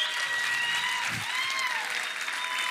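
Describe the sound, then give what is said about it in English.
Sustained applause from a large audience welcoming a preacher before he speaks: dense, steady clapping at a constant loud level, with faint cheering woven through and no gaps. “So before he even says a word, will you like erupt with applause, with love, with gratitude?”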